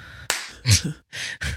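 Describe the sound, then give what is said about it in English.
Several sharp, bright hand claps in quick, uneven succession, about four in all, each with a brief noisy ring trailing after it, with no talking. “did you clap when you started it?”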